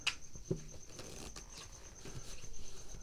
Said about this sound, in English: the truffle shuffle almost exactly mimics the way I would really shuffle a deck of cards